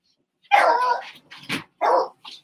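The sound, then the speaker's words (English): A dog barks several times, starting with one long, drawn-out bark followed by a few shorter, sharper barks in quick succession, with no one talking. “He's a beast of black dog.”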